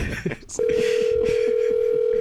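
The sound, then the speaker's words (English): A steady electronic telephone tone comes on the line after a short pause and holds loud and unbroken to the end, with faint muffled voices in the background. “This place just sort does of, not answer the phone.”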